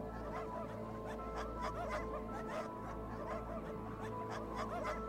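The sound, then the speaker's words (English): A pack of sled dogs barking and yelping together in a dense, overlapping chorus that carries on without pause, steady and fairly loud, with no voices, as three dog sleds approach from the east through the mountains. “coming from the east through the mountains, they hear the sounds of dogs barking, and shortly after, they see three dog sleds making their way towards them.”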